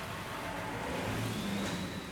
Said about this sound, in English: hello FedEx truck